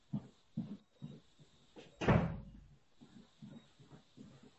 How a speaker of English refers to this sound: Okay, 1 second. Let me close the door here.